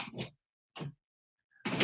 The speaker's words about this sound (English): Close the door behind you, please.